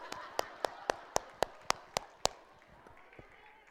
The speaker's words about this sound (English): Okay, you guys. I think we ought to just give a hand clap to the people who's always gone forward.